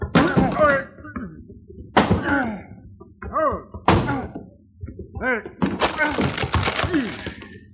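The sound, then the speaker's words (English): A locked closet door with someone shut inside is forced open with several heavy thuds and splintering cracks, spaced a couple of seconds apart, while voices strain and exclaim. “Come on, lay under this door.”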